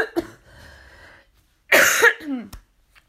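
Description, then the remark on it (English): A loud, harsh cough bursts out after a brief quiet stretch, followed by a short wheezy throat rasp and a sharp click; no one speaks. “Oh, sorry, I need a cough.”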